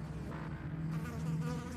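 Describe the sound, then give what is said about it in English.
A steady, low droning hum of flies buzzing by a refrigerator, continuous and fairly loud, with a slight wavering as wingbeats overlap. No voices are present. “Standing upright again and tightly pressing his lips together to avoid inhaling any flies, Bernard walked around to the front of the refrigerator.”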